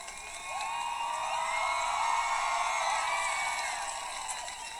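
A crowd claps and cheers for several seconds after a thank-you speech, a dense, steady wash of applause with scattered high whoops and shouts rising through it before it begins to taper off.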